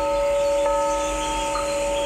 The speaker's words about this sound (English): And the best part about it is it has a big bell that we can ring.